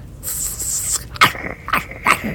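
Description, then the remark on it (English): A small dog yaps: a thin, high-pitched whine followed by three sharp, shrill barks spaced unevenly, loud and with no talking. “It's a chihuahua snake.”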